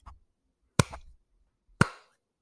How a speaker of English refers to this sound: The sound. That's what it sounds like. One hand clapping.